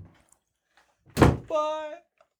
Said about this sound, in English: Love the door bit. Yeah, for a big fan of the door bit. I do love the door bit. He always opens and closes the door.